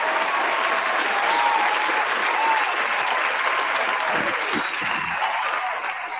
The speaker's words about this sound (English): Speaking of Roman Reigns, he topped the PWI 500 list. You know what I'm saying? And to no one's surprise. Let me hit the round of applause for Roman Reigns, man.